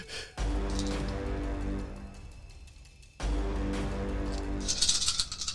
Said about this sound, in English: A lot of dice being rolled right now, guys.